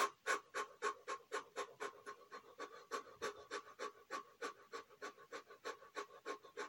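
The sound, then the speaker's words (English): Rapid, rhythmic panting breaths, roughly three to four per second, steady, each a short breathy puff with no talking, done as a quick breathing exercise to begin a short reset meditation. “So find yourselves in a comfortable position and let's begin with our quick breathing.”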